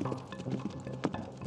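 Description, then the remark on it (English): Horse hooves clip-clop in a busy, uneven patter of fairly loud knocks over a dense background, with one sharper hit standing out near the end. No one speaks. “Adding warmth to their home were the Shrout's roster of pets, which included a black Labrador, a poodle, a gerbil, and even two horses.”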